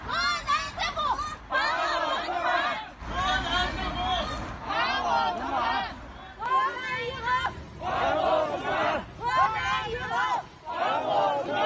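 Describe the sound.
A crowd of bank customers protesting in front of a provincial Banking and Insurance Regulatory Commission in China shouts in loud, rhythmic bursts, many voices chanting phrases together separated by brief pauses, asking authorities to return their money, with a steady undercurrent of murmuring and babble throughout.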